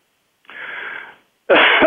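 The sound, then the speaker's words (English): A raspy intake of breath followed by one loud, harsh cough bursting out at the end, with no talking around it. “I'm coughing.”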